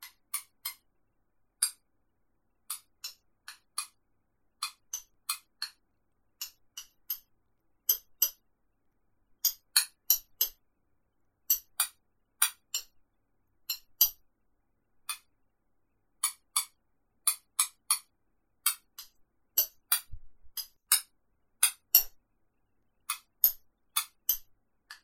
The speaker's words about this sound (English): And then there's another recording where I also tapped it out with glass taps. So it's a bit of a higher pitched sound.